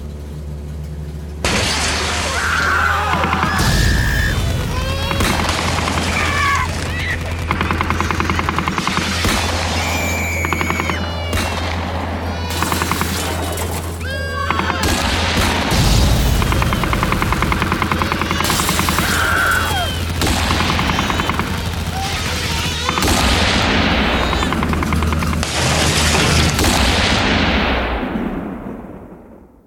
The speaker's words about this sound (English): Heavily armed agents had surrounded the compound. It wasn't long before the gunfire started.